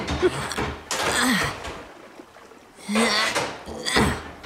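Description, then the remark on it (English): A door is pushed shut over a baking sheet wedged in the gap between the door and the ground to block water from coming in. It makes several harsh, scraping bursts spread over a few seconds, mixed with breathy, strained grunts. “I think I can wedge a baking sheet in there to block the water from coming in. Close the door, and let me give it a go.”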